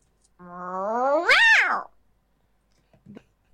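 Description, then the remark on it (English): A person imitates an angry cat with one long, drawn-out meow that climbs in pitch and then swoops down, loud, followed by a brief faint vocal sound. “I'm an angry meow, but we only use this one on rare occasions because overall we're a very happy kitten family.”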